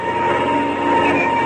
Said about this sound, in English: Well, I'll jump into the front cockpit and get the engine started. Well, we're all set any time. All right. Here goes the starter.